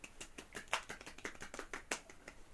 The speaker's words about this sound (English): Go clap.